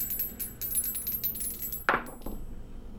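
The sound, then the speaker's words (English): Dice clatter onto a hard table for a listen roll in a game: one sharp impact, then a short rattling tumble that quickly settles, with faint clicking beforehand and no one talking. The roll comes up 28. “These dice are too good, and I miss my old ones, but man, I feel like Yipsil's helping me out.”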